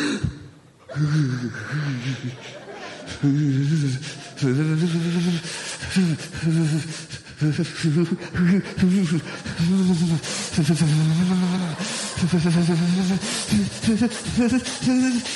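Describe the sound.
A voice imitates the buildup to a sneeze with a long run of loud, strained, breathy gasps and groaning vocal sounds that keep swelling over about fifteen seconds, repeated in uneven bursts.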